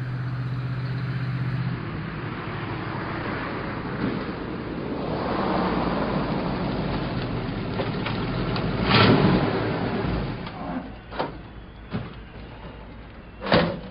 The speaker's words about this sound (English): Well, here comes an old truck now. Is that the same one? Why, yes it is.